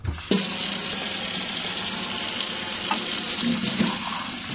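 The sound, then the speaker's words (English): Water runs steadily from a tap into a sink, a continuous hiss of dishwashing with a few faint knocks of dishes underneath. No one speaks. “I was washing the dishes when he came by with more solar bids.”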